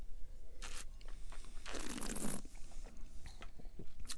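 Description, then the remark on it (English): An airy slurp as someone sips and aerates red wine, a single breathy draw in the middle surrounded by faint mouth clicks and soft handling noises, with no talking. “I'm going to take a sip.”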